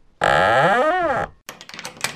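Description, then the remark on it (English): A door swings shut with a long, loud creak that rises and falls in pitch, followed by a quick series of sharp clicks as it is latched and locked. “Quick, shut the door. Lock it.”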